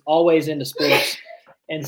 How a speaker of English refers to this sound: Bless your child. Bless you. Good Lord. Get that woman some Allegra. He said, get that woman some Allegra.